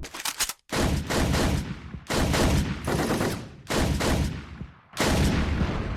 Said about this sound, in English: A short cutscene plays, and we watch from Zack's eyes as he's gunned down by a hail of gunfire.